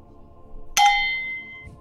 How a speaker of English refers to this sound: Which bell it's was it? Was the show bell next to that one? It's the comedy bell. Ring the other bell.